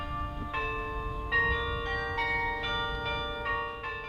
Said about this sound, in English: some solace in those concentric circles of sound that ring from the church towers. And it's a way for churches that have all had all their services canceled, a number of them, to reach out to community, to their parishioners, and give some comfort.